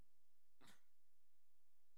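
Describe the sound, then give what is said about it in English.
A single quick sneeze bursts out, sharp and breathy, followed by near silence with only faint background noise. “Bless you.”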